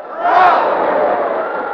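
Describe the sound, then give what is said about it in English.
A group of voices lets out a loud, sustained cheer as one of three cheers, a single rousing shout that swells quickly and holds steady for over a second before easing slightly. “All right, gang, let's give 3 cheers.”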